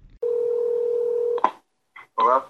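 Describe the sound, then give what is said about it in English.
A steady telephone tone hums for about a second, then cuts off with a sharp click, followed by brief bursts of sound and a short snatch of voice. “Hang up that phone.”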